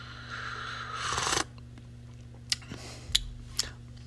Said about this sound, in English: I'm going to get a cup of this, a little sip here.